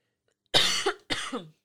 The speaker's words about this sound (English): Sorry, don't mind that cough.